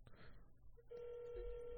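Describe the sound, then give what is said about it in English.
A phone call rings out: after a moment of low rumbling noise, a steady, mid-pitched electronic ringing tone starts and holds evenly to the end, with no talking over it. “It's ringing.”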